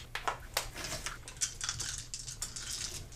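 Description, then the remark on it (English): A rapid series of small hard clicks and clatters as dice, including a D10 and a D8, are rolled across a tabletop, fairly quiet, with no voices over them. “All right, take your dice and roll.”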